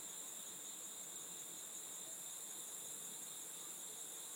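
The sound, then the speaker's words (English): A steady outdoor chorus of cicadas and crickets, a continuous high-pitched buzzing and trilling that never lets up, soft and even throughout with a faint wash of background noise and no voices. “You can hear the cicadas and the crickets.”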